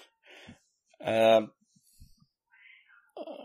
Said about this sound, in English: Cat? Yeah, the cat's just going absolutely ballistic. I've got no idea what it wants, too.